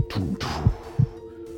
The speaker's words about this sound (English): and then you feel his heartbeat. And it's very loud. And you can feel it radiate through his arm and into your chest, and then you can feel your sink. And your hearts are just thudding, and you can see the fire as your heartbeats go.